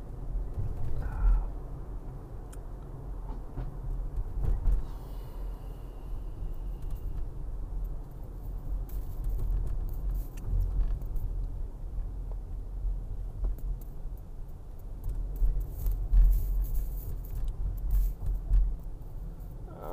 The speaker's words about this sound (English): There's not that many trucks, I think, in the city. There's a few, and when the few come, they're fucking irritating, but it's not enough that it's like, oh man. Oh, this fucking asshole truck.